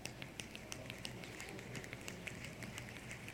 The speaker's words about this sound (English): I told the first service, and I'll tell you, I could never snap my fingers until I got a dog. They were like, get over here.